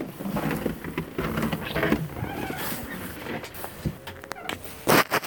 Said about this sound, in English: Sorry for the interruption there. You got to hear a door opening and me walking on snow in very frigidly cold weather. Did you hear the squeaking of the door and the crunching of the snow?